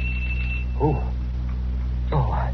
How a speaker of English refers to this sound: The doorbell. Oh, it couldn't be at this hour. It couldn't be. But it was.